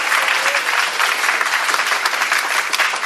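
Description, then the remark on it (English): Sustained applause from a sizable audience, steady and fairly loud throughout, a dense wash of many hands clapping at once with no voices standing out. “Yeah, you can clap. That's fine.”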